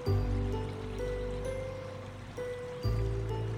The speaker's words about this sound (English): You even see a river. You look around and see that you are floating on a raft. This is an easy river. You see gray rocks. They line the sides of the river. The sound of water calms you.